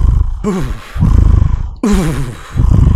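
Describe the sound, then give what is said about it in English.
A man's voice imitates an ape, making loud, rough huffing grunts in two bursts, each with a wavering, hooting pitch that rises and falls over breathy, noisy exhalations. “You got to make huffing noises.”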